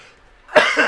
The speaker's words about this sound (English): Also, if you guys hear me coughing, it's I took a drink during one of those jokes that I just said it's good afterwards. And I really did laugh and just like inhale ramen coke down the wrong pipe.